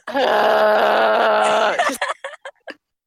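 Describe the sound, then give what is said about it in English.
A voice imitates a whale with a long, steady, tonal moan that sags slightly in pitch, followed by four or five short, choppy grunts that trail off into silence. “just gruntled whale noises in the background.”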